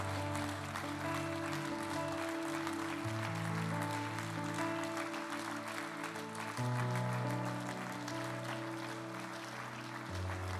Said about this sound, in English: If you put up your hand right now across this place, would you just start? Come on, everybody, would you start to clap if you put up your hand?